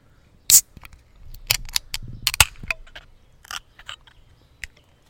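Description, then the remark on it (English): A sharp pop as the cap comes off a bottle of Turtle Power, a 14% Russian Imperial Stout beer with chocolate, pecans and salted caramel, opened to be poured, followed by a quick series of metallic clicks, clinks and light rattles, with no one speaking. “Let's crack this bad boy open.”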